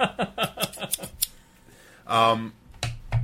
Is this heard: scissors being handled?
yes